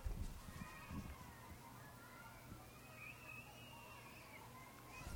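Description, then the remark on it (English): Faint, high-pitched children's screams and shrieks rise and fall over a steady low rumble, with no one talking over them. “You will hear some children screaming in the background when I don't talk.”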